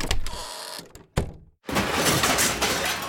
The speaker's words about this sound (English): I spilled the fajitas all over the floor. Oh, no! How'd that happen? I slipped on some ooey-gooey nacho cheese.